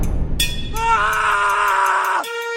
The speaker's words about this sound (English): I want to melt when I hear the scream